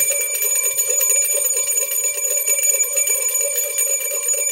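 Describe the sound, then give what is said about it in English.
A bell rings continuously and loudly with a rapid, rattling clang, like an electric alarm bell, sustained at steady volume for several seconds with no voices. “You know, there are still two games left, so we're still going to ring the bell.”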